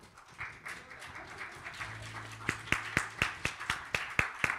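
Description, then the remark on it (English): An audience claps as performers take a bow, starting as a diffuse patter of scattered hands and settling into a steady, fairly quick rhythm of sharp claps, heard at moderate volume. “Let's clap. One more clap.”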